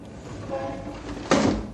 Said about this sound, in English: Shut that window. Here we are in a skyscraper, 40 stories above the street, and yet that traffic noise would drive you crazy. Shut the window, I say.